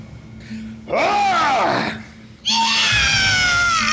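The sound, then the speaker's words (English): In a tabletop role-playing game, a person playing a dwarf fighting a goblin bellows a loud, throaty battle roar in two long, strained bursts, the first rising and falling in pitch, the second held harsh and steady, imitating a fierce war cry. “If you would like to give it a particularly throaty battle roar at this point.”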